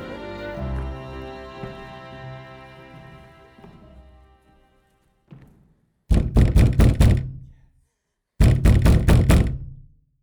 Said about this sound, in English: When she awakened the next morning, it was to an incessant banging on her door.